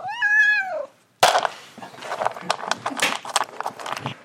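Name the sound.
cat meowing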